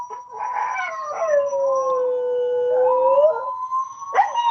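Dogs howl in long, wavering tones that slide down and rise again, loud, with a couple of voices overlapping and a short yelp-like rise at the end.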